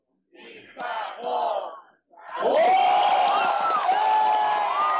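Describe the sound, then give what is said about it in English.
A baseball stadium crowd chants a cheer for Lotte player Kim Sang-ho in unison in the top of the ninth inning: two short rhythmic shouted bursts, a brief pause, then a loud sustained sung chant with rising and falling voices filling the air. “Okay, so I'm in the stadium now. So you can hear some of the chants.”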